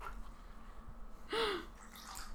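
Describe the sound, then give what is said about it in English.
A brief gurgling splash of wine poured into a glass, one short glug against a quiet, faintly hissing background with no talking. “Oh yeah, just pour that wine.”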